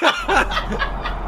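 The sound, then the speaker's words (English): A voice imitates frantic squawking gulls, 33 seagulls slamming into one small opening, in quick, repeated shrill bursts, fairly loud, with a laughing quality. “This is 33 seagulls slamming into one small opening.”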